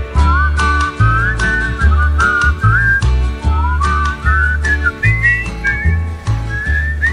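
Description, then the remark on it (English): A person whistles a lilting tune, the clear melody gliding up and down over a steady musical backing with a strong, bouncing bass beat throughout. “That's me whistling, by the way.”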